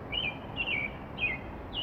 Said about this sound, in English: I do not. I do not know. I believe it is a robin. It's a kind of a quintessential sound for much of the United States, I think.